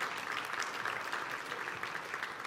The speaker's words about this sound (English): And so let's welcome three of our young ladies up to the stage here. Ladies, why don't you take your seat? Round of applause for them as they come up here.